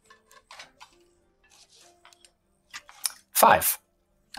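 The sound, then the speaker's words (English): A twenty-sided die (d20) is rolled, with scattered small clicks and taps followed by a brief, louder rattling clatter as it tumbles and settles. “So the card you flip over is Roll me a d20.”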